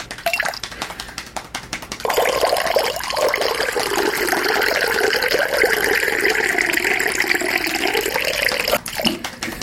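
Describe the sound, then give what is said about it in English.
Water from a cup pours onto a person's arm in a steady, splashy stream for about seven seconds, fairly loud, after a couple of seconds of faint handling noise. No one speaks. “being able to be picked up by Goldblum and poured all over Laura Dern's arm”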